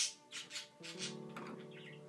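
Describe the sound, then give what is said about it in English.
Birds chirp in quick, agitated bursts, then a harsher, sustained squawking joins in. The calls overlap densely, with no voices present. “See, even the birds are frantic about these things that we've done to ourselves as human beings.”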